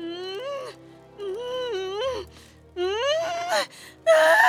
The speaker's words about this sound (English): Soon enough, Kuzole was heavy with child. Her cries filled the air. The baby was coming.